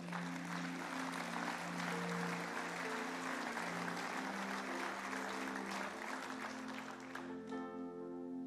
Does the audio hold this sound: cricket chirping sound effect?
no